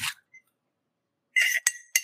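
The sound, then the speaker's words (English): A spoon clinks against a ceramic coffee cup, a few bright ringing taps and a short scrape after a pause, fairly loud with no talking. “Can we get the clink of a spoon in a little cup full of leaf?”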